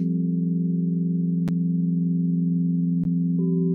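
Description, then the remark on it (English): A steady tone from a sound bath meditation drones throughout, a low, sustained hum with layered overtones that barely changes. Two brief clicks break through, and the pitch shifts slightly near the end. No one speaks. “And then sometimes, like me, tonight at 7 p.m, I will be doing a little bit of sound bath meditation.”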